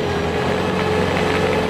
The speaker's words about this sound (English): Ice resurfacer! Watch the people out there on the ice. They glide as they skate round and round. But the more that they skate and they skate and they skate, then the ice becomes rough on the ground. That's when this truck comes around for his turn.